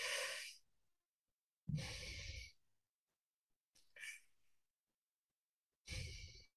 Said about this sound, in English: You'll take an inhale through your teeth and through that smile, and then you exhale through your nose.